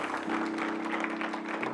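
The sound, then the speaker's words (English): A church audience claps in praise of God, many hands blending into a dense, continuous wash of applause, with a low sustained organ-like tone humming beneath. “Come on, guys, give God a big hand clap of praise all over the church today.”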